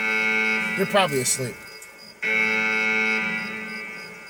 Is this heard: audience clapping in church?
no